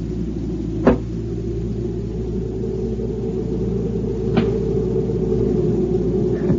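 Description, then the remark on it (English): Two sharp, cracking knocks of a thrown rock striking a cabin, spaced a few seconds apart, with a faint echo from the canyon trailing behind, over a steady low rumble. “Just an echo from the canyon if you throw a rock against the cabin.”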